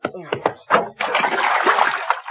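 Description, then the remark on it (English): A brief voice gives way to a loud, sustained burst of water splashing and sloshing as a person is dumped into a bathtub, lasting over a second. “Hey, don't pour that water on me now.”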